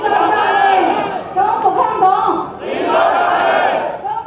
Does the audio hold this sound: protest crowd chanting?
yes